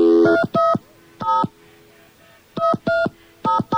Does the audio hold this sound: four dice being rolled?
no